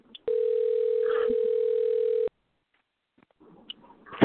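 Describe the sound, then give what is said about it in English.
A phone line rings once after a participant drops off a call: a loud, steady two-second ringback tone heard through the receiver, then silence before faint, muffled voices begin. “I don't know why his straight phone's ringing, but something's wrong.”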